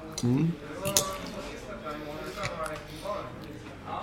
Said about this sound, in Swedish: Mm. Mm. Ursäkta, vi tuggar.